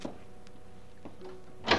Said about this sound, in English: Sharp on the instant of 9:30, there was a fumbling at the outer door of the house. And the front door slowly opened.